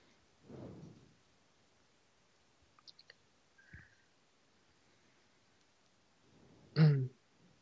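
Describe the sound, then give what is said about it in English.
A man clears his throat twice without speech. The first rasp is softer, and the second, after a few small clicks and a thud, is sharp and loud. “clear his throat and go this time quite loud.”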